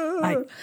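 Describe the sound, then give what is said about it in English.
A woman's voice imitates a dragon with one brief growl that swells into a raspy, breathy huff, like fire-breathing, then fades into faint hiss. “I think she's making dragon sounds.”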